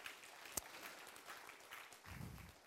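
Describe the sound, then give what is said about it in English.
An audience at a church sermon claps its hands together in a dense, steady patter of applause, fairly soft, with one sharper clap standing out near the start and no talking. “Can you give the Lord a hand clap for that?”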